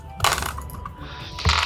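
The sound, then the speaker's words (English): Dice clatter across a hard tabletop in a quick rattling burst, then a second sharp clatter near the end as they settle, fairly loud with no one talking. The dice are rolled for an Arcane Blast attack in a game, with three dice adding accuracy. “So that's 3 dice adding accuracy, isn't it?”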